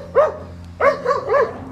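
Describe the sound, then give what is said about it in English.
Three or four sharp barks from the speaker's own dogs, one alone then a quick cluster, fairly loud over a low steady background hum. “My dogs this time.”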